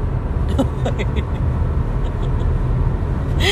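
A steady, loud low-pitched rumble fills a car cabin as it drives along, with faint snatches of voices now and then underneath the road noise.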